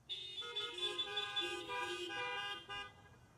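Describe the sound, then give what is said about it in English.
Several car horns honk together as a greeting at Cross Point Baptist Church, a loud, sustained, overlapping blare lasting about three seconds, with a brief extra toot near the end. “Greet each other with a holy honk.”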